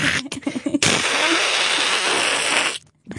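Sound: imitated hacking cough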